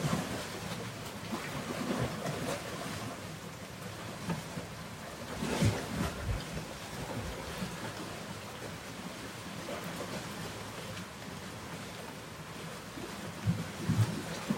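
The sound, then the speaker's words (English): Steady rain falls in the morning in a continuous, even hiss with no voices, its texture swelling briefly a few times, including one louder gust-like surge partway through. “Cleansing rain this morning.”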